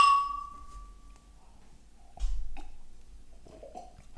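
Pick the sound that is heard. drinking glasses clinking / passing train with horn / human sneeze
drinking glasses clinking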